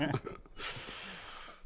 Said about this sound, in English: As we're sniffing like crazy because we just did a bunch of lines of coke.